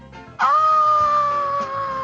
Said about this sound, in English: Is that a bad scream or a good scream? I'm so excited. It's a mandatory scream anytime you see ….